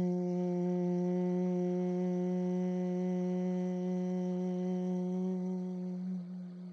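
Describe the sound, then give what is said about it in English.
As a breathing technique, a person hums a long, steady, low-pitched "ng" tone on the roof of the mouth with sealed lips through one slow exhale, imitating a bumblebee's buzz; the rich, even drone holds for several seconds before tapering off at the end. “And then a long, slow exhale with that NG sound on the roof of your mouth, like there's a big bumblebee buzzing inside of your mouth.”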